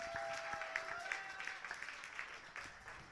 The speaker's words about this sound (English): Clap for the poets.